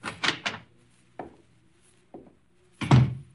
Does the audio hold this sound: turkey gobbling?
no